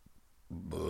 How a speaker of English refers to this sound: Excuse me, I have some burps going on here, I got some indigestion, and I drank a Bang Energy, by the way